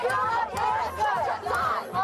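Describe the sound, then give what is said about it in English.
A large crowd gathered outside the Supreme Court, awaiting the Dobbs decision, many voices shouting and calling together at once in a loud, continuous roar with rising and falling cries throughout. “Outside the Supreme Court, where every day crowds have been gathering in anticipation of the Dobbs decision.”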